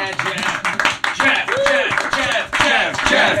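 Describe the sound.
An audience claps in a steady, dense round of applause, mixed with loud cheers and shouting voices that rise and fall across the few seconds.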